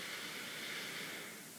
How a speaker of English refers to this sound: So let's do a big one. Let's start with the belly, and let's breathe in.